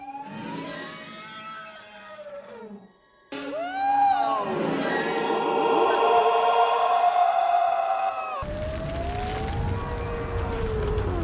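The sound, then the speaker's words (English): A sequence of three loud yells of the krayt dragon from Star Wars, each a long, wailing roar with rich harmonics and sliding pitch, the middle one the longest. No one speaks. “If I'm feeling really ambitious in editing, I'll go through and I'll put all the different crate dragon yells right here.”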